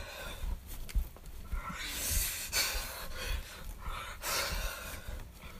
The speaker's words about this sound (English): I hear you breathing really loud.